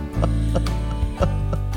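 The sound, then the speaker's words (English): Horses' hooves clip-clop at a steady walking pace on a trail over a sustained, droning musical backdrop, the hoofbeats sharp amid the low, eerie tones. “That's the creepiest music ever. It's us on horses”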